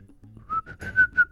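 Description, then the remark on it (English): A short, breathy whistled melody rises through a few quick notes, shaky and uneven, as someone attempts the Steamboat Willie cartoon theme tune with no talking. “I can't whistle, or I was going to try to do the theme for you there, but I can't whistle.”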